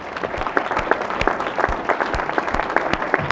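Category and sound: crowd, round of applause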